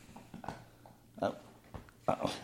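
A dog gnaws and chews on something, making irregular crunchy, clicking bursts with short pauses between them, the louder bites coming toward the end. No one speaks.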